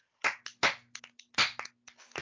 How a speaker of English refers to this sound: Thanks to the panelists. And give yourself a clap. Round of applause.